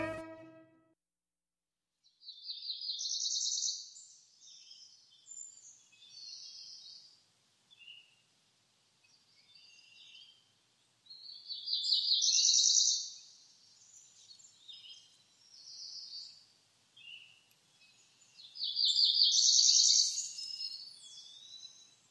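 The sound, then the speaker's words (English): A cerulean warbler, a small songbird of the warbler family about 4.3 inches long, sings alone in a repeated series of high, buzzy songs, three main phrases spaced a few seconds apart, each rising into a quick buzzy trill, clear. “today's In Nature segment is about the cerulean warbler. The cerulean warbler is a small songbird of the warbler family”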